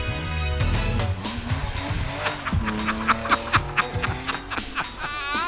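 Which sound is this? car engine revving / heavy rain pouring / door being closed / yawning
car engine revving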